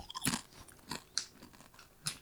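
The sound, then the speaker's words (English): Someone crunches on Chirps Eat Bugs Sriracha Cricket Chips: four or five sharp, crisp bites at an uneven pace, with softer chewing in between and no talking. “This is a Chirps Eat Bugs Sriracha Cricket Chips.”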